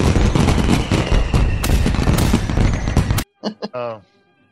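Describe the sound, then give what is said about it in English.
A loud barrage of firework explosions crackles and pops rapidly for about three seconds, then stops abruptly, followed by a brief burst of someone speaking. “That's a firework here.”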